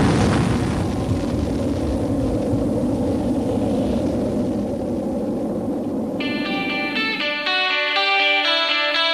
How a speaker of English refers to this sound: Here's a nuclear explosion for you.